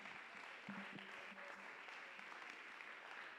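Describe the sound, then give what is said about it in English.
An audience at a church service claps their hands in steady, sustained applause, a dense wash of overlapping claps with a faint voice briefly audible underneath. “Well, let's clap our hands just one more time.”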